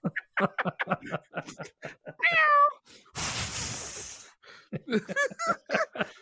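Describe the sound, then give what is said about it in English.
Amid quick speech, a person mimics a cat with one drawn-out, wavering meow, followed by a loud breathy hissing burst, before the talking resumes. “I really became the cat then, see?”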